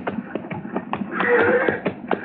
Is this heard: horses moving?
yes